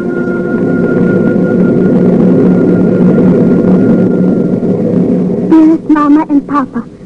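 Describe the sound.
A steady, loud aeroplane engine drone of a plane in flight bound for New York fills the cabin with a constant low roar and faint whine, and a voice briefly begins speaking over it near the end.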